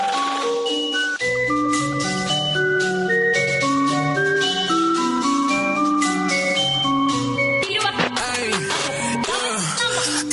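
The intro of a rap song remix plays loud and steady: a bright, tinkling synth melody over a deep bass line that enters after a second, with sliding vocal-like tones near the end.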